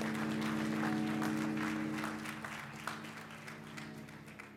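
An audience claps their hands for God in a dense, sustained round of applause, loud at first and then gradually tapering off, with a steady low hum underneath.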